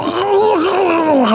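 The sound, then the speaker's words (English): A voice imitates Schwarzenegger screaming in the chair in a film: one loud, strained, drawn-out cry lasting over a second, its pitch wavering and sliding down toward a groan at the end. “Screaming in the chair.”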